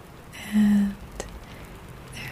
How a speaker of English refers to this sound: On this particular day, it's raining. A very calm, cleansing rain.